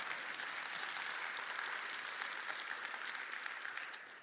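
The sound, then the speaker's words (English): Sustained applause from a sizable audience, a dense wash of many hands clapping at once, steady and fairly loud throughout before tapering slightly at the end. “You can clap right there.”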